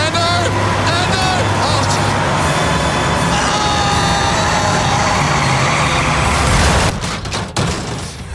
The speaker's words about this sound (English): as Hamish and I are heading back in to the middle of the figure eight, and it looks like we're going to be perfectly T-boned by another bus. As Andy and Hamish make their way into the X.